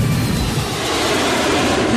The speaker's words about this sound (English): And the plane I went up in didn't necessarily make that noise because it was a bit smaller than that.